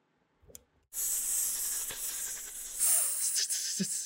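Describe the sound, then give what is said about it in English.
A person hisses like a snake: a long, steady, airy hiss held for about three seconds, following a brief breath or click, with no speech. “can we get a snake out of you?”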